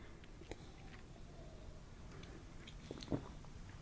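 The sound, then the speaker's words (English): A quiet first sip of a coffee oatmeal beer, with a brief wet slurp near the end over a faint, steady background hiss. A small mouth click comes earlier, and no one speaks. “First sip.”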